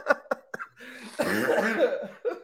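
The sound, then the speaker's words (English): A coughing fit: a few sharp, quick coughs, then a longer raspy stretch of hacking, and one more cough at the end. “I'm sorry, I'm so coughing.”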